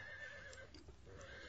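A horse kept in the pens nickers softly and steadily for its companions, a low rumbling whinny with faint clip-clop of hooves, with no talking.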